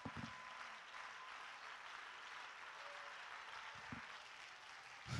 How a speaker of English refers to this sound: Somebody clap your hands until you feel something.